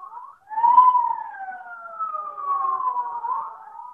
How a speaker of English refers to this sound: Sirens, state police, militia, all roads blocked off.